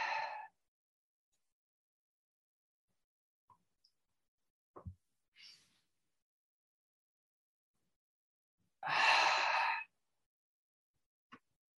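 Slow, deep breathing during a meditation focused on breathing: a brief breath at the start, then a long, airy exhale after a stretch of near silence broken only by a few faint clicks.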